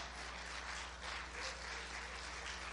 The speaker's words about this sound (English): Brazil, Colombia, Nicaragua. Somebody give Jesus a hand clap for that.